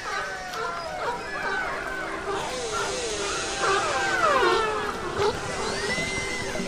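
Underwater orca and sea lion calls: overlapping whistles, squeals and rising-falling tones over a steady hiss of water noise, with a few sharper bark-like yips, moderately loud and continuous.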